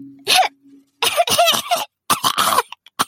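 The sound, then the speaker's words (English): Harsh coughing: one sharp cough, then a rapid fit of several in a row, another raspy burst, and a couple of faint little coughs trailing off at the end. “All was well for a short time until her sister, Almira, began coughing.”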